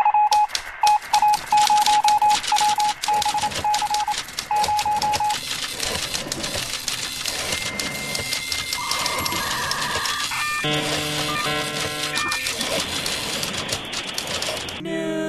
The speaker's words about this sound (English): Man, I'm just so psyched every time I hear that old modem noise. Gives me that good feels.